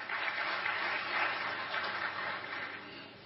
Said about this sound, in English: They're going to watch you, those of you that in the provinces didn't clap enough for them.